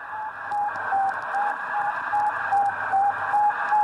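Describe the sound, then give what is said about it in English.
Radio beeps from Sputnik, the first satellite, recorded on an old tape machine: a steady, evenly spaced train of short mid-pitched tones, about two per second, sounding through a loud hiss of radio static. “So if you never heard what Sputnik sounds like, this is what it was.”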